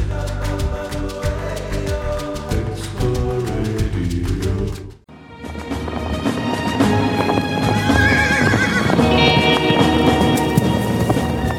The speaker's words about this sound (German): Wild und ungezähmt galoppieren die Pferde durch die Steppe. Die Mähnen wehen im Wind, der Staub wirbelt in Wolken hinter ihnen auf. Ja, wir befinden uns immer noch in Namibia.